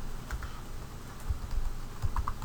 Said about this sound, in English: And we are going to type it. Sorry there, I'm having trouble typing today.